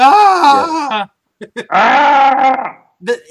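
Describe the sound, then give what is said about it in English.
A voice imitates Chewbacca's growling scream, a happy rather than angry scream, in two long, loud, warbling bursts with a rough, bleating quality, separated by a short gap with brief clicks and a small trailing vocal sound. “That was a happy scream, by the way. Not an angry scream. This was a happy. No, it was our best Chewbacca.”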